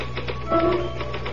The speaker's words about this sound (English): Can I use the typewriter for a moment? I just got to put one thought down before I forget it.